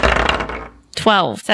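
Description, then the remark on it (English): A burst of dice rattling and clattering for about half a second as players roll initiative in a game of D&D, a brief pause, then a person starts speaking. “Everyone roll initiative.”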